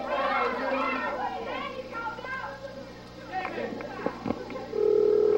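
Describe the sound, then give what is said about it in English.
Voices and children's chatter fill most of the moment, then a loud, steady telephone ringing tone over the line cuts in right at the end, after Lance Russell dials a number on live TV. “Well, it's ringing right now,”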